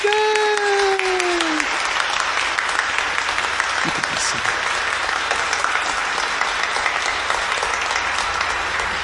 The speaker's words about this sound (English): And now let us welcome them with our applause.